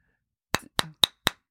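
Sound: gavel banging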